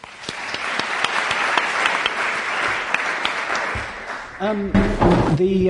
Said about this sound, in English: So I think a round of applause for the panel.